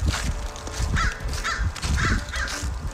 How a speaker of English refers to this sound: He's being followed by like so many birds. I don't know what's going on there, but it seems like you were getting trailed.